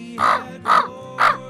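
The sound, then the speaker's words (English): A person imitates a raven, giving three hoarse, throaty caws spaced evenly about half a second apart, fairly loud with no other talk. “My favorite to do is a raven.”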